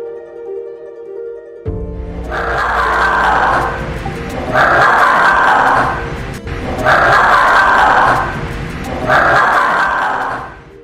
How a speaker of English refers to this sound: Why are you playing bush dog sounds before the fishing cat episode? Well, I was going to ask, is it a dog or is it a cat? That was my opening. Those are the bush dogs, right?